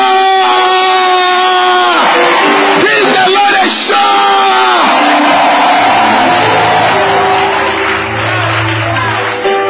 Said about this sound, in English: Are you clapping your hands for Jesus? Give the Lord a shout.